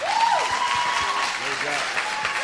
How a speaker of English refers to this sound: I'm clapping.